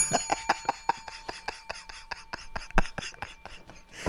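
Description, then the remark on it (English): A small bell rings in quick, rapid strikes, a bright metallic jangle that is strongest at the start and then keeps going as a steady rattling of short taps with no talking. “Where the fuck's my bell?”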